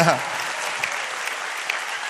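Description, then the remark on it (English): A crowd applauds the band with dense, sustained clapping that fills the space evenly, loud and steady throughout, with a brief voice at the very start. “So let's give them one more round of applause.”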